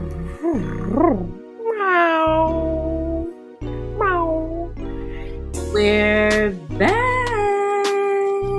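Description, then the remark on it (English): A voice meows like a cat over and over, about six loud, drawn-out, wavering meows in a row, with a low steady rumble underneath. “Who the fuck else is meowing outside?”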